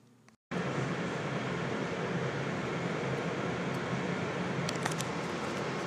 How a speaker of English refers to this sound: We are now taking the subway over to Chinatown for today's show.